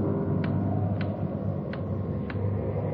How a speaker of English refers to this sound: Loud clock, ain't it?